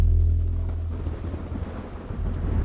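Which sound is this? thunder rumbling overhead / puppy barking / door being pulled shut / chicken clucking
thunder rumbling overhead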